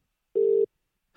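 A single short burst of steady, buzzing ringback tone, like a telephone ringing heard down the line, clear, followed by silence with no voices.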